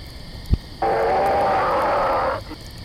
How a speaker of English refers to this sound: Is it just me, or did that roar sound louder than the last one?